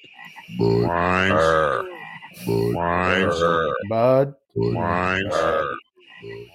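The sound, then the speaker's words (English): Deep, exaggerated frog croaks in three loud, drawn-out bursts with short pauses between them: the cartoon Bud Frogs from a beer commercial, voiced frogs calling in turn, clear. “Someone sent me the Bud Frogs. I had to play it.”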